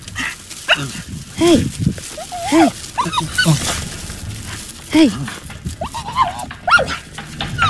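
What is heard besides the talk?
dog vocalizing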